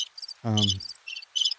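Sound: crickets chirping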